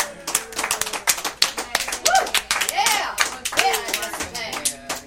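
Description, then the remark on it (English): A round of applause: many hands clapping quickly and densely for about five seconds, fairly loud, with a few whooping cheers rising over the clapping midway. “So, ladies and gentlemen, just give your big, let's give all big round of applause”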